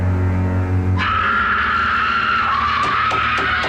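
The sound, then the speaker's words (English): A low droning hum gives way to a long, sustained high-pitched male scream from a film, in a higher, feminine-sounding register, holding loud and steady for a few seconds, with no talking. “The way that he screams is very... It's higher register.”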